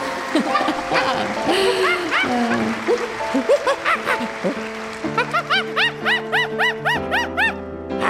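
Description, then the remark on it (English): A monkey, Riley the ice skating monkey, chatters excitedly with squeaky, rising and falling calls, then breaks into a fast, rhythmic string of short shrill hoots, loud, over a steady droning tone, as an acceptance speech for Outstanding Athlete of the Year at the 2010 ESPY Awards. “Riley, the ice skating monkey!”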